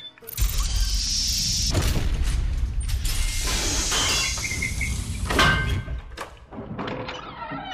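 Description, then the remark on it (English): A giant metal panel covering a door grinds and rumbles as it is lifted, with a steady low mechanical drone, a couple of sharp metallic clanks and thuds along the way, and a final settling clunk. “Here, let me lift the giant metal panel covering the door so you two can be on your way.”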